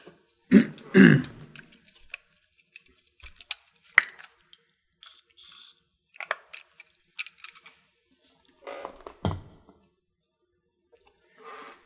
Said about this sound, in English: Excuse me as I take a brief drink of water after a long read.